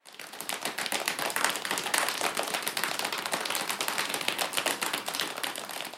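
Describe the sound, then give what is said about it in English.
Dense, rapid patter of hands slapping on legs, a steady crackling rush of overlapping smacks that mimics rain growing stronger, part of building a thunderstorm with body percussion, fairly loud and continuous with no voices. “As the rain starts to become stronger, we can slap our legs with our hands.”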